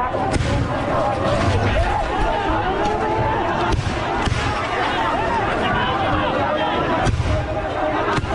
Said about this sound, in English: Footage shows people in a standoff police near the prime minister's office as multiple shots, probably tear gas canisters, are heard.